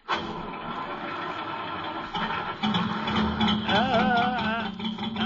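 A cold car engine cranks and catches, then settles into a steady, rumbling idle, the motor kept running to warm up. Fairly loud, with a rougher, uneven stretch partway through.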